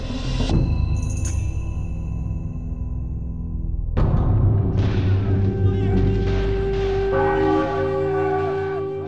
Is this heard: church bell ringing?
yes